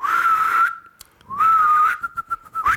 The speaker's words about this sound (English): Oh, well, I'll just whistle and call my other horse.